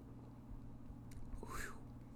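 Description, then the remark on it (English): A brief, soft slurp of someone sipping beer after a toast, rising and falling in pitch over a low steady hum, with a faint clink or rustle just before it. “Well, here, let's take a sip. Go ahead and get a little cheers for beer.”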